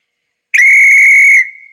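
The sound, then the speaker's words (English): A single shrill whistle blast at a Halloween play, loud, starting sharply and holding a steady high pitch for about a second before trailing off. No one speaks. “If we can all remember that, I can blow the whistle on our play.”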